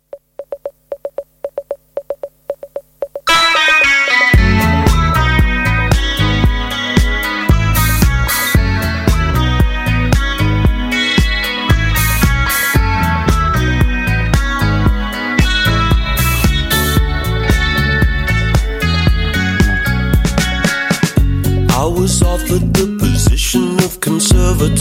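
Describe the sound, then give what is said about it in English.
An indie pop song, a track from a band's second album, opens with a few seconds of steady, beeping tone like a phone signal, then a full band with punchy drums and bright instruments kicks in loudly and keeps driving. “we're going to be playing a track from their second album, …, and this is 4 minutes and 14 of indie pop goodness”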